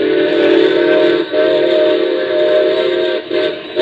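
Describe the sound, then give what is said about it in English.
A loud, sustained steam locomotive whistle blows as the train approaches a crossing, a rich chord-like tone held steadily with two brief dips before continuing, with no voices over it. “Better whistle for it.”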